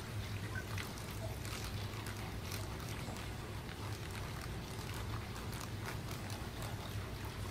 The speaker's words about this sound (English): My tank is 79. This water's 79, so it's perfect for me. So what I do is I fill up my little acclimation chamber with half of their water and half of my tank's water.